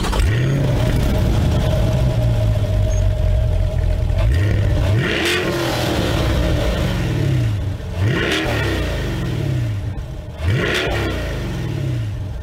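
A 495-horsepower mid-engine sports car with four exhaust pipes and massive tires revs hard and loud, its pitch climbing repeatedly with sharp breaks between each rise, like quick gear shifts during strong acceleration, with no talking.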